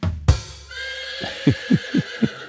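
A horse whinnies loudly, a long shaky neigh with strong tonal harmonics that breaks into a rapid series of about five descending snorting pulses at the end.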